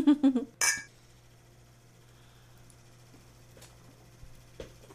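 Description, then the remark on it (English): Beer glasses holding West 6th Brewing's Transylvania Tripel, a Belgian-style tripel ale from Lexington, Kentucky, clink together once in a toast, a bright ringing tap right after a short burst of voice, then a quiet, steady hum follows. “Cheers. All right, cheers.”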